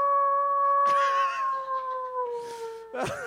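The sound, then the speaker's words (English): A person imitates a wolf howl, a long sustained tone that slowly sinks in pitch over several seconds, fairly loud, with brief breathy bursts partway through and near the end. “Can't get a word out without owling this guy.”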